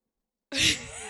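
A person yawns: a sudden breathy, voiced exhale after silence that swells, then trails off into a softer, drawn-out breath.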